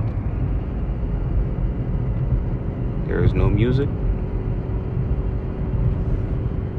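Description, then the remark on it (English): Steady low rumble of road and engine noise inside a moving car, continuous from start to finish, with a person speaking briefly over it partway through. “I'm in the car.”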